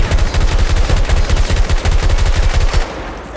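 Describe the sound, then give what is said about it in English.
Video game gunfire from a lever action gun: a rapid, steady string of sharp, loud shots with heavy low thump, running for nearly three seconds before stopping abruptly. No voices are heard. “He hit me out of the air with the lever action gun.”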